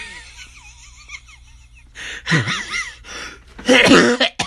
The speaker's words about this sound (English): Oh my god, I'm so sorry if I'm coughing in the microphone.